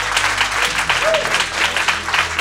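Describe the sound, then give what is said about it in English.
A debate audience at Intelligence Squared claps steadily and loudly, a dense continuous wash of applause that holds at an even level throughout without any voices rising above it. “Can you applaud if you were a yes on that?”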